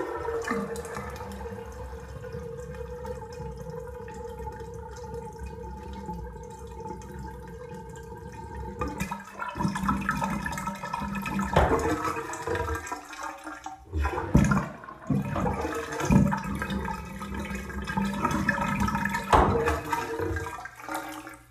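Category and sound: household object, bathtub water draining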